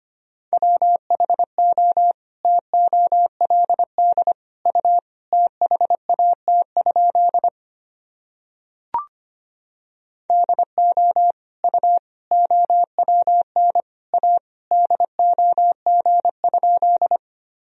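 Morse code practice at 25 words per minute, sending sentences from Top 400 Words and Abbreviations: a steady mid-pitched tone keyed rapidly into dots and dashes, in two passages separated by a short silent pause with a brief click, no voices.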